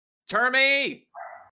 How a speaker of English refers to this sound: Dog.